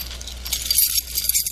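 Metal keys on a keychain, including house and car keys, jingle and clink together in a bright, continuous rattle, fairly loud, as the keychain is shaken for over a second with no one speaking.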